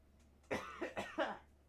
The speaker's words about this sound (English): Sorry about the cough.